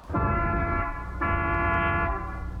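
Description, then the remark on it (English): Street traffic heard through an open window on the campus of NF Tech. A loud, brassy vehicle horn blares in two long, sustained blasts over a low rumble, with a brief dip between them and no voices. “Coach, wait a minute, let me close this here window. You got all that traffic noise out there.”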